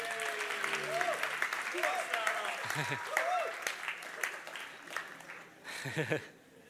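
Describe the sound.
A crowd claps steadily for several seconds, a dense, even patter of many hands, with a few brief voices and cheers rising over it before the applause fades out.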